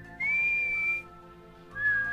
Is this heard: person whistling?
yes